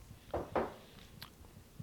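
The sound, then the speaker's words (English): Two quick slurping sips of beer, followed by a few faint mouth clicks and a soft swallow; quiet overall, with no talking. “Take another sip.”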